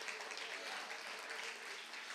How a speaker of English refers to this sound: Come on, clap your hands a little bit more.